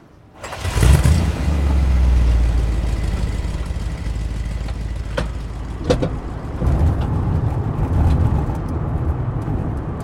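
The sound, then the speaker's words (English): A car engine starts up loudly and keeps rumbling steadily as the vehicle pulls away, driving up a slippery road to a parking lot, with a deep, continuous roar and faint clicks and knocks over it. No voices. “Can we take your vehicle up to the parking lot?”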